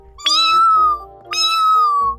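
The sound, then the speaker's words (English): Two long, drawn-out cat meows in quick succession, each rising sharply then sliding down in pitch, loud with no voices. “Oh, that's Miss Kitty. She loves to hang around on the roof.”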